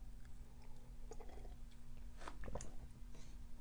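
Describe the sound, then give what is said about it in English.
A quiet sip of tea, with a few soft slurping and swallowing noises over a steady low hum, and no talking. “This, hold on, sip of tea.”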